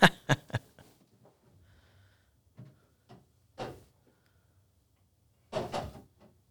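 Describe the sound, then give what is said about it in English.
A refrigerator door is opened, with sharp clicks and rattles, soft shuffling, then a louder rustle and a clink as a bottle of Cranky beer is taken out of a fridge stocked with beer. No one speaks. “We should say that our whole fridge is basically stocked with all of your beer.”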